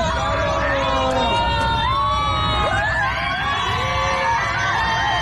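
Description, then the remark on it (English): Passengers aboard a flight erupt in loud cheering, whooping and shouting as a flight attendant opens the bathroom door on two people inside, many voices overlapping continuously over a steady low rumble. “But there's an audio clip going around of passengers freaking out when a flight attendant opens the bathroom door to see 2 people joining the Mile High Club.”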